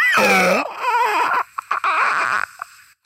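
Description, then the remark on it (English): A voice imitates a monster movie creature with a strained, wavering howl that slides in pitch, then breaks into gurgling, choppy growls and short rasping bursts before trailing off; a cough is included. “how come I'm not doing monster movie noises? Check this out.”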